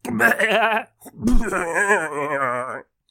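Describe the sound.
A person imitates a goat bleating: two loud, wavering bleats, the first short and the second drawn out, with a brief pause between them.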